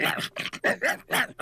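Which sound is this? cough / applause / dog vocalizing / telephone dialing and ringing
dog vocalizing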